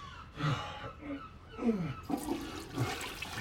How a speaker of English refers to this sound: Why have you pulled flush? Well, I did a little wee, so... Oh, what a waste of water.